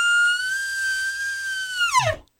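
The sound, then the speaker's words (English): A dual elk bugle blown on a game call: a long, steady, high whistling tone with bright overtones that slides sharply downward at the end into a short, low grunt. No voices. “Well, that's my dual game call, dual elk bugle right there.”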